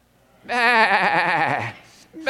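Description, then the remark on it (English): An audience answering a speaker's question of what the sheep says lets out a single long, wavering "baa," imitating a sheep's bleat, loud for about a second before trailing off, followed by a brief murmur. “Do you know how to bleat? What does the sheep say?”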